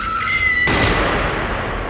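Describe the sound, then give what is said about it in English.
A single gunshot fired by a shooter on North Sweetser Avenue cracks out after a faint, high, steady tone, then its echo rolls on in a long, noisy decay to the end. “Marta heard the gunshot. She said it sounded like a cannon.”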